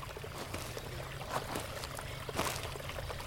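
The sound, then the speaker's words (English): A steady wash of flowing creek water on a hiking trail, with a couple of brief splashy surges breaking through the constant rushing hiss. No one speaks. “We have officially reached the creek.”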